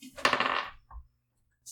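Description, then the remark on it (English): Dice clatter and tumble across a hard tabletop in one quick rattling burst under a second long, then settle, rolled for an attack during a tabletop role-playing game. A faint knock follows before silence. “What's wrong with these dice?”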